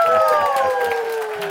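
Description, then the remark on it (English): A crowd lets out a collective groan, many voices sliding downward together in a drawn-out moan for a second or so. “I get moans and groans.”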